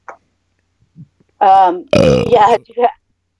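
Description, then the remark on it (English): A loud, deliberate burp, drawn-out with a croaking, voiced rasp, preceded by a shorter tonal burst and trailing off with a final gurgle, otherwise quiet. “Blessed be my burp.”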